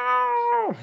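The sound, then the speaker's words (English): A single drawn-out meow from a male cat, fairly loud, holding a steady pitch before sliding down sharply at the end, with no one talking over it. “Nah, he yells at me all the fucking time. I don't know what he's saying.”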